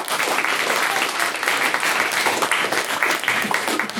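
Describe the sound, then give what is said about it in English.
Steady audience applause at a debate for a maiden speech, a dense wash of many hands clapping at an even loudness for about four seconds, with no voices rising above it. “So, in retrospect, an applause for her”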